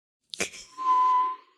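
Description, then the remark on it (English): A short click, then a steady, breathy whistle held for about half a second, like someone sucking air in to imitate a tea kettle whistling in reverse, alone with no talking. “A reverse tea kettle whistle.”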